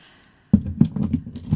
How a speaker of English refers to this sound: Stop bashing the mic. That's my truck keys, in case you're wondering.